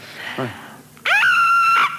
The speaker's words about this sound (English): Will you be there screaming? Yes, I will. Let me hear you scream loud, please.